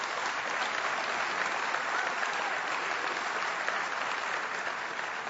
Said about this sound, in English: So tonight, some of them are actually listening, and you might want to just welcome them and say hi to them because there you go. Give them a big clap.